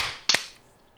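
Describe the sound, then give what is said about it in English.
A single sharp hand clap to sync recordings rings out alone, a loud crisp crack that fades quickly into quiet, with a soft hiss of background noise before it. “All right, we'll do a clap sync.”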